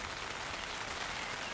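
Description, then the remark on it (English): Steady rain patters on the taut fabric of tents overhead while people camp on a lawn on a cold, damp night: a dense, even hiss of countless drops with no voices, fairly soft and unbroken throughout. “He even has a picnic table where we share cheese and beer and laughs before it starts raining again and we all take cover in our tents.”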